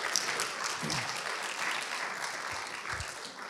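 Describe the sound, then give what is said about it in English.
An audience claps steadily, a dense sustained patter of many hands that fills the whole stretch at moderate loudness, with no voices rising above it. “Let's give Joel a round of applause.”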